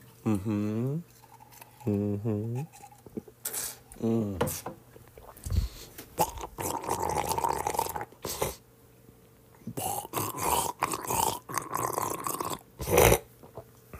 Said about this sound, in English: Gargling.